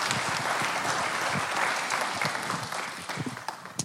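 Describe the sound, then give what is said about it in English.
The City Church audience bursts into a steady round of applause at a morning service, dense overlapping clapping that holds strong through most of the stretch before thinning into scattered claps at the end. “Would you guys please give Sean a round of applause and encourage him this morning?”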